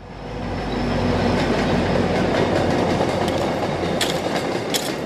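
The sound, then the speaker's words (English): A train rumbles past in Dorchester, Boston, by the Greenwood Street Community Garden, its loud, steady clatter of wheels on rails filling the scene, with brief high metallic squeals near the end. “In Dorchester, where the clatter of a passing train gives way to the scrape of a rake, the Greenwood Street Community Garden is thriving.”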